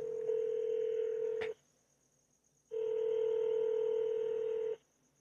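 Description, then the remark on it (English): A telephone call being placed to a switchboard in Congress, reaching the Washington, D.C. office of Senator Lindsey Graham of South Carolina: two long, steady electronic tones on the line, separated by a short silence, with a sharp click near the end of the first tone. “Call this fucking number.”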